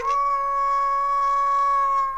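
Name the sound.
wolves howling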